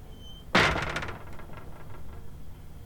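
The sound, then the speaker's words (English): A door is shut with a single sharp, loud bang that rings and rattles briefly before fading, followed by a few faint clicks over quiet background hiss. “Dr. West, please shut the door.”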